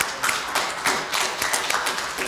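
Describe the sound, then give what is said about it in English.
A crowd applauds steadily to welcome guests from World Vision, many hands clapping into a dense, crackling wash of sound that holds at an even loudness for the whole stretch, with no voices heard. “Can we just give God a round of applause and welcome our guests from World Vision?”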